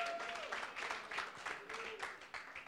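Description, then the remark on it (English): A church audience claps to give God praise, in sustained, dense applause, many hands overlapping into a steady rolling wash with a few voices calling out underneath. “And you ought to clap and give God some praise.”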